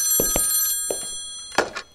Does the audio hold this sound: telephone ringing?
yes